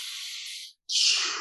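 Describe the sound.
A voice imitates the deep, heavy breathing of porn stars: one long hissing breath in, a brief pause, then a strong, airy breath out. The breaths are loud and there is no talking.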